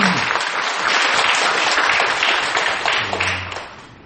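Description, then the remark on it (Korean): An audience breaks into steady, dense applause for a person deemed worthy of a merit award, holding at a fairly even loudness for about four seconds before tapering slightly at the end; a brief murmur of voices surfaces beneath it. “네, 박수 한번 부탁합니다.”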